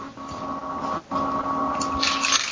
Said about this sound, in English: That sounds like a vacuum. And probably a vacuum.